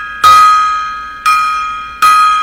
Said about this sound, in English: Gong time there.